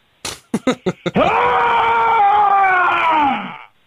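A man lets out a few quick, choppy huffs, then a long, loud, sustained scream lasting a couple of seconds that sags slightly in pitch before cutting off.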